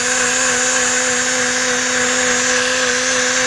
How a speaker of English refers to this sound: It's a mini blender. A mini blender, okay. Boy, it looked weird because it had fluid in it. Yeah, it's got a little protein shake in there. So this thing, it does a little 30 seconds every time you touch the button, you know?